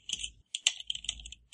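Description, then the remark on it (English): Rapid, irregular clicking of keys on a computer keyboard, fairly crisp, with a brief pause midway before the tapping resumes; no one speaks. “It's a nice keyboard.”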